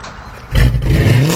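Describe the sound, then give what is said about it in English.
A car engine with a loud, throaty custom Carnage exhaust revs up sharply, its deep rumble swelling and holding at a high pitch, with no talking over it. “Man, that car sounds good. Oh, you know, it's just that Carnage exhaust I got at Troy's Muffler.”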